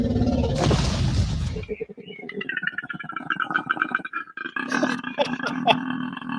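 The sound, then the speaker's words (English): A koala's deep, rasping growl, recorded at the San Francisco Zoo and used for a T-Rex sound: a loud, noisy snort first, then a long run of rhythmic, pulsing grunts with a belch-like, buzzing low tone. No voices. “But in reality, koala bears make this deep growl that we use for the T-Rex.”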